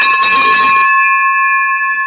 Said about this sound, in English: We're going to ring what's very, very common on the podcast, the victory bell. Hold on one sec.